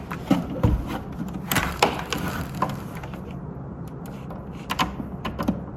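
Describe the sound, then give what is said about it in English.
A keyboard cable is plugged into the back of a Mac SE 30 computer: a series of scattered clicks, knocks and light scraping as the connector is fitted, with no one speaking. “Okay, I plugged in the keyboard to the back of the computer, and I'm about to plug in the power.”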